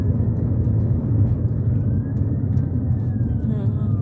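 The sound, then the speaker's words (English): A heavy fire truck passes slowly on the road, its deep engine drone steady throughout, with a faint siren wail sweeping up and down in the background toward the end. “There is a fire truck.”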